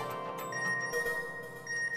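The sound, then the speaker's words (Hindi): A phone message notification tone plays as messages keep arriving one after another, bright electronic chimes sounding steadily for two seconds with a couple of fresh pings along the way, clear with no talking. “अरे भाई, उसके मैसेज पे मैसेज आ रहे हैं।”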